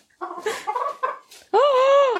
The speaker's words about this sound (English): Oh! Oh, wait a minute, we got a chicken. The chicken has entered the room. We have a chicken.